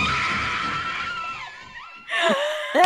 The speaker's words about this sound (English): I love that all the girls just start screaming, you know, where they're like, it's super crack. Yes, let's do this shit.